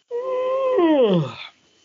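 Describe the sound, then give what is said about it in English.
A single drawn-out, voiced yawn holds a steady tone before sliding downward in pitch and trailing off into a breathy sigh, with no talking. “Excuse me, I'm yawn.”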